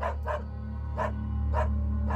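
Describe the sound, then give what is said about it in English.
A Russian Terrier mix dog named Smoker barks sharply, two quick yaps followed by two more spaced out, fairly loud over a steady low background hum, brought to help police inspect the Scotland Yard basement. “Reporter Jasper Waring brought his Russian Terrier mix, Smoker, to help with the inspection.”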